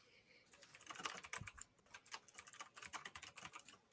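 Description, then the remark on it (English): Rapid, uneven clatter of keys being typed on a computer keyboard, continuous after a brief quiet start, with no one talking. “Quit your typing.”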